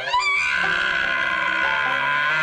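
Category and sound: bird, crow cawing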